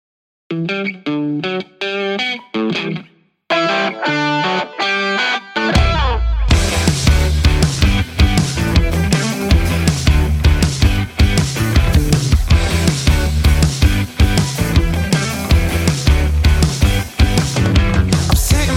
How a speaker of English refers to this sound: And I tell you what, this really is a fantastic song.